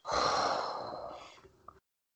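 A heavy, breathy exhale close to the microphone, loud at first and trailing off over a couple of seconds, with no one talking.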